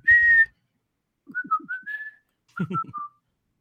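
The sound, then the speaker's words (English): Someone in a radio studio whistles the Charlie Wilson's appliance commercial jingle heard on the Big X: a held note, then a quick rising run of notes, then a few brief closing notes, with a low hum underneath. “That's one of the commercials that every time I'm in studio and it plays behind me, I have to whistle it.”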